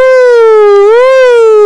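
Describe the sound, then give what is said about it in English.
Someone loudly imitates an ambulance siren with their voice: one sustained, buzzy wail that dips slightly, swells back up, then eases down, with no other talking. “Who the fuck told you to make a ambulance sirens noise?”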